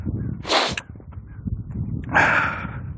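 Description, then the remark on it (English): A male puppy, being told to sit, snorts twice, two short breathy bursts about a second and a half apart, with soft shuffling and movement sounds in between and no talking. “You're ruining the shot, puppy.”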